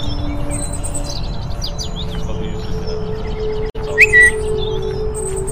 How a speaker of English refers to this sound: Do you want to hear the? I'll show you the sound of the birds and things now.